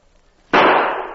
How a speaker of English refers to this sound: Don't make your trigger finger do all the work. Use your whole hand and squeeze both butt and trigger. I'll shoot again.